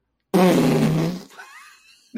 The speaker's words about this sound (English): It's the spoiler fart. The spoiler fart. Spoiler fart.